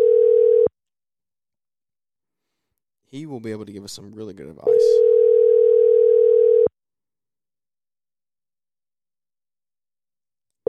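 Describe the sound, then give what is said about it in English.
An outgoing phone call rings with a steady electronic ringback tone in long bursts separated by silent gaps. A man speaks briefly between two of the rings. “Let's see if he will answer the phone for us.”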